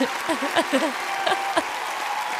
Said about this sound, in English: I don't know where the applause button is, but I think it's... Oh, right here.